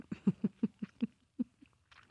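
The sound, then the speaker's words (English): Someone chewing food in a steady, quick rhythm: about eight soft, low, moist munching sounds, then a few fainter, slower chews trailing off. No talking. “Now I hear you chewing.”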